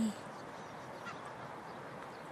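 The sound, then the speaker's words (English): A seagull flying in the sky cries out with harsh, honking calls that blend into a steady wash of outdoor background noise, lasting the whole short stretch. “Hey, it's like he's dancing around in the sky or something. I wonder if he's singing.”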